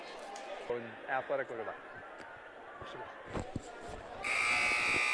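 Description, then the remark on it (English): A loud, harsh basketball arena buzzer blares steadily for the final second as the second half of a game is about to start, cutting in over a busy arena with murmuring crowd and scattered voices. “All right, you hear the buzzer in the background.”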